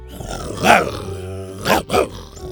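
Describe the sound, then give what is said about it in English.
A dinosaur growls in three rough, rumbling bursts: one longer snarl near the start, then two shorter growls close together toward the end, loud. “Then, with a growl, Buck nodded to the next stone.”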